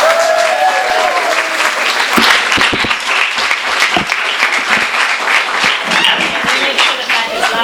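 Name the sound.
audience applause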